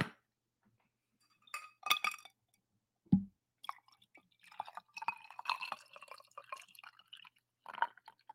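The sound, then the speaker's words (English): Poland Spring water trickles and drips into a coffee cup in short, uneven bursts, with a few light clinks of the vessel mixed in. It's fairly quiet, with no talking. “It's a more sensual, a more delicate pour than the coffee that really rips in there.”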